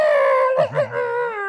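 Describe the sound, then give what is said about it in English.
A dog whines and howls in a drawn-out, wavering cry with a brief break in the middle, loud, with no other sounds around it. “I love to hear him cry like that when I'm having therapy.”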